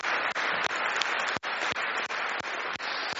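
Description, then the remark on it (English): A steady wash of audience applause, a thank-you round for those who prepared the day's event: many hands clapping together in a dense, continuous patter that stays fairly even in loudness throughout, with no voices standing out. “So I think we should start with a big thank you round of applause to those who've prepared today.”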